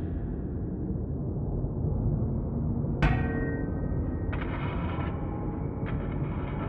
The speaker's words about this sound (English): A clang rang out from the darkness, followed by the sound of metal grinding on stone. A door.